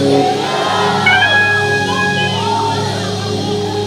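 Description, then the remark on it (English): A large church audience screams and shouts all at once, answering a call to scream "thank you, Jesus": a loud, dense wall of overlapping voices with high cries rising above it, sustained steadily for several seconds. “I don't know whose word this is, but if this is your word, scream, thank you, Jesus.”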